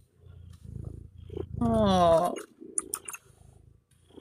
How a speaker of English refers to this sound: Who meowed? This is River. River! Here. You're gonna say hello? Aww.